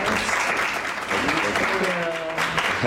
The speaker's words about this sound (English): And please give a wonderful round of applause to our awesome hosts out here.